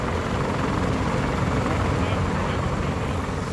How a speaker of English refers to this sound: In these exercises, there's a huge amount of activity. You've got Marines taking off in helicopters, clattering away into the jungle.